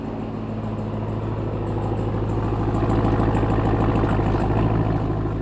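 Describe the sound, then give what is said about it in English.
A truck's exhaust idles steadily, a deep, even low rumble with a faint rhythmic pulse, holding at constant loudness with no talking. “Listen to the exhaust for a second.”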